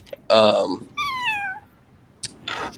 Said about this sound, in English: Was that your cat? My cat just decided to join the pod. Say what's up, Pen.